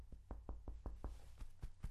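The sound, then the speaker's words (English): Knuckles knock on a shoulder over a once-broken collarbone about nine times in a quick, steady rhythm, each hit a dull, soft thud of fat and muscle, with no voices. “Mine's, hear that? That's the thud of fat and muscle.”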